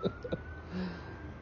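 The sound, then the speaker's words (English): A faint emergency vehicle siren wails in the background, a thin steady tone, with a couple of brief breathy sounds at the start. “I hear the sirens in the background.”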